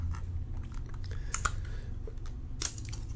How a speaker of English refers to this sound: The magnets, I can hear them in their little chambers, and they're not in there snug, so they keep clacking back and forth. A lot of side to side on this.